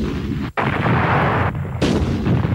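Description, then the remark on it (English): A loud, dense barrage of booming sci-fi explosions from a meteorite storm rolls on almost without pause, briefly cutting out once before the roaring blasts resume. No one speaks. “Meteorite storm.”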